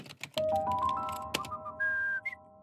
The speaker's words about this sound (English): Whistling softly to himself, he walked back to his own workstation and munched on the biscuits while swiveling left and right on his chair.